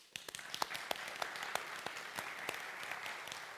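A church audience applauds the worship team steadily, with dense, overlapping hand claps and a few sharper individual claps standing out in a fairly even rhythm. The clapping is moderately loud, and no voices rise above it.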